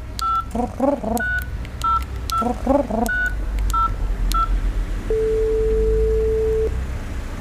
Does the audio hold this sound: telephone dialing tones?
yes